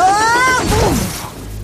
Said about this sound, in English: couldn't stop in time, and he crashed into the deep snow.